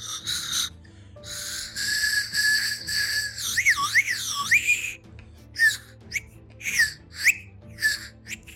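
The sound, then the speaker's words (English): A breathy whistled melody of the nursery rhyme Baa Baa Black Sheep, high-pitched with wavering, sliding notes, first held and gliding, then broken into short rhythmic phrases. No one speaks over it. “Baba Black Sheep!”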